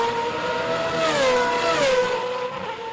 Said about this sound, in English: What the hell is that noise? Oh, wait, I got to look out of the window. What? There are people driving racing cars round and round in circles on a perfectly smooth circuit. This is outrageous.